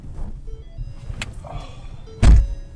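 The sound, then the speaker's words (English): Someone climbs into a battered white Prius loaned out by the county, amid low rumbling ambience and faint rustles, with a light click partway through, then a car door shuts with a loud, heavy thud near the end. “Justin gets into the battered white Prius the county loans out to the project for moments like this one.”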